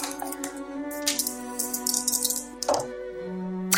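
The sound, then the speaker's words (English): Dice rattle and clatter in several quick bursts of sharp clicks, rolled for a Spot Hidden check in a roleplaying game, heard over a steady, sustained musical drone. No one speaks. “Let's roll some dice. Yeah. Let's get some dice rolling.”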